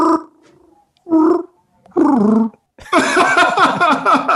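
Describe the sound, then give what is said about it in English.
A person does a loud imitation of Chewbacca's Wookiee growl: three short throaty, moaning bursts separated by pauses, then a longer, rougher roaring howl. “you said you got a pretty good Chewbacca? Just his growl, man.”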